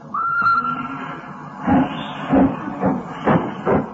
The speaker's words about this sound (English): Hissing and snorting and growling and grumbling. Out of the station the train comes a-rumbling, puffing out smoke and white steam in the dark,